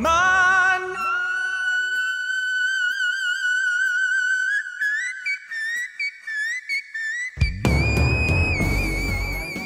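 A male singer holds an extremely high, flute-like note in whistle register, sustained and slowly climbing in pitch, then a loud, dense burst of backing sound crashes in near the end.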